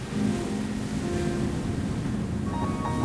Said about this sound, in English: Rompen las olas, el estruendor, cómo se ve el paisaje, los empedrados. I hear the sound of the waves breaking, the rumble, and I can see the landscape full of rocks in the moonlight.